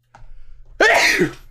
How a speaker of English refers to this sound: Sneeze. Holy moly.